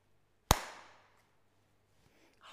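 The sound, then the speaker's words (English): A single sharp, loud clap as hands smack together around a bunch of fresh mint leaves to make them more fragrant before they go into a blender for a drink. The crack rings out briefly and fades, followed by quiet and a few faint soft knocks. “You clap it between your hands.”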